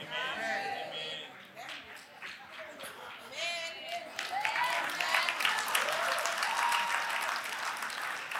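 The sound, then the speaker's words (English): Lazy audience clapping, a steady patter of many hands with voices murmuring over it at first, then swelling a little louder and fuller through the second half. “It was a very lazy clap, like, take it like you believe it.”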